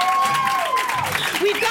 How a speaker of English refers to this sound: Clap.